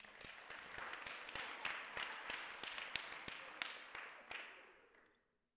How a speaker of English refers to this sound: Those of you who didn't clap the first service, I'm wondering why you're clapping now. Was it more impressive the second time?